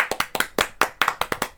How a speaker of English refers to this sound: Let's round of applause.